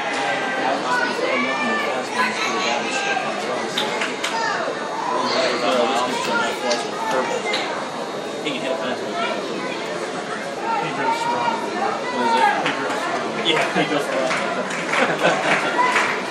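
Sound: crowd noise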